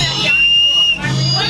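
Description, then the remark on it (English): An Oscar Mayer toy whistle, blown live on AM 560 radio from Lake Michigan, gives one steady, shrill, high-pitched tone lasting under a second, with voices murmuring before and after it. “Did you just blow a whistle?”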